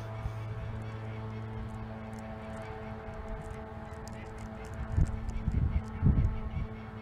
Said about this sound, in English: Please excuse the bird behind me. Must be the breeding season.